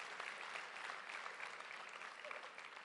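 A crowd of people, asked to clap one time, clapping together in a dense, steady burst of applause that holds at an even, fairly loud level for about three seconds, with no voices over it.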